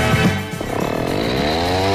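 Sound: chainsaw running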